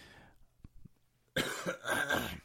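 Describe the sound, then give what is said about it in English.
A brief soft throat sound gives way to a loud, harsh cough burst that rasps on for about a second, with no talking. “There's going to be quite a bit of coughing on this episode”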